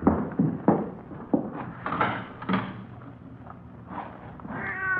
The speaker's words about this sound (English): Well, maybe it's just a cat out in the street, you know, in the side alley, maybe, huh?